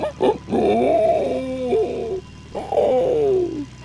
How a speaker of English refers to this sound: Really? Who bought the pig in here? It's just our dog, Brawn. I didn't know he made pig noises.